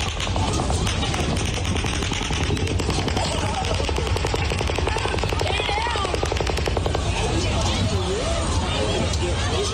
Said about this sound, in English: I mean, that doesn't even sound real, does it? Does it sound real to you? Doesn't sound real to me. Those are gunshots, man. Raining down on people. Killing people.